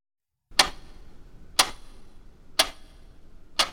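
A clock ticks steadily, four sharp, bright clicks spaced about a second apart over a low, quiet background hiss, with no voices.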